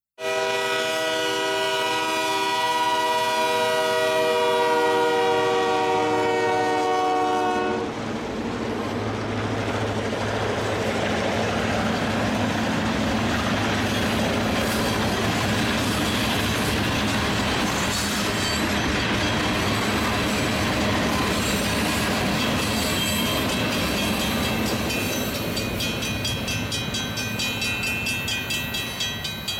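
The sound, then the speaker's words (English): A loud train horn sounds for several seconds, then gives way to a steady, heavy rumble and clatter of a train passing through a city, continuing without pause and with no voices. “Let's listen to the train, and then I'll explain how I incorporated it into a song.”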